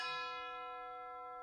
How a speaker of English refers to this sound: The next thing about this piece is that it's full of bells. You can hear chimes near the beginning.